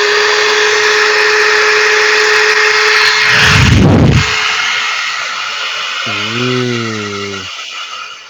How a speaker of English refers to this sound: Are you ready to hear it? It doesn't vibrate, okay? It just it literally sounds like a hairdryer. Ready?